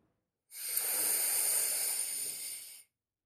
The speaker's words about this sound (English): Let's try this 5 times. Breathing in,